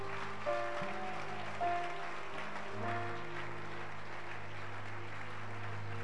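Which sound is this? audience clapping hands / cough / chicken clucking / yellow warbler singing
audience clapping hands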